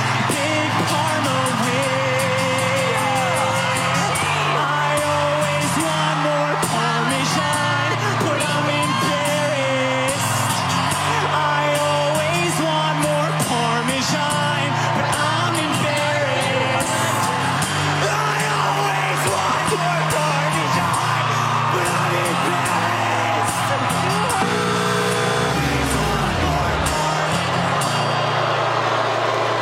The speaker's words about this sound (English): Crowd is booing that he got four X's.